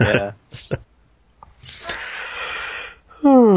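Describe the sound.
Drawn-out yawning by people: a voiced groan, then a long breathy inhale, ending in a loud sighing vocalization that slides downward in pitch.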